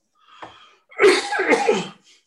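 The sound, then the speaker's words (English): A faint breathy catch, then a loud, harsh allergic cough that bursts out in two rough pushes lasting about a second, with no talking around it. “Every year I get this allergic cough, but it does have everyone around me thinking, oh my God, this is it.”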